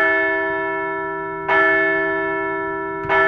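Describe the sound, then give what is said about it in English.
A large, resonant bell rings in slow, steady strikes about a second and a half apart, each stroke's bright tone lingering and fading into the next. No voices. “Anyway, let's ring the bell ahead of a Wednesday rubber match with the NL East champion Braves.”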